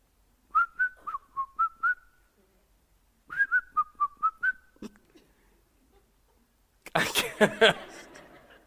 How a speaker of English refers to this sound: It's hard to whistle. I don't know why I can't get it.